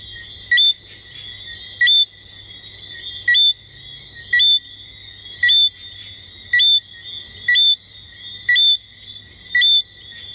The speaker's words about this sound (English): And of course, the tiny native St. Lucia tree frog.